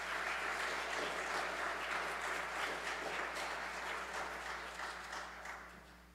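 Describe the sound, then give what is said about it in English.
A crowd applauds steadily, dense overlapping claps for several seconds before gradually tapering off toward the end, as a church audience welcomes a guest preacher with a round of applause. “And I would like for you to just to welcome him with a round of applause.”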